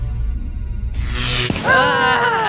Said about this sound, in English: Well, let's wonder no further and turn our attention to a quiet street in a sleepy little town called St. Petersburg, where the summer air is suddenly filled with a strange humming noise followed by a blinding flash of light.